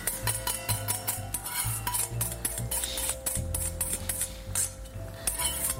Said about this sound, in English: at this point now, I have turned my pan down to low. The spices are in, everything's sizzling, everything's beautifully incorporated. I'm gonna give my eggs one more little whisk, and while it's on low, pour the eggs in slowly, right into the center.